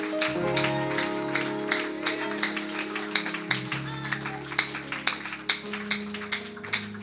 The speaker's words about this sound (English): One more time, would you clap your hands unto the Lord?